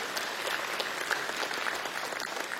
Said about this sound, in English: Can we give God a round of applause for what he's doing? That's amazing, church.